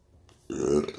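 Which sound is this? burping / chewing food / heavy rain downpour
burping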